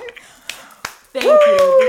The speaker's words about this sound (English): I wish I could clap right now, but I'm holding the phone, but I wish that... Can you give a hand clap for me